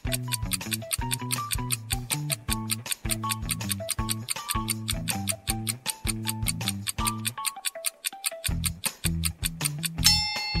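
clock ticking countdown

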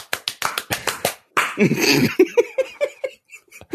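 hands clapping

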